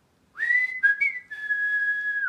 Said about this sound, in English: So when you heard this whistle, you knew that your mom or dad or your brother or sister was looking for you, and you immediately went to the place where you thought the whistle was coming from.